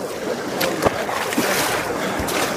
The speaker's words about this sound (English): And you got more rapids. We got to get more help. There's more rapids, so we got to get it out here.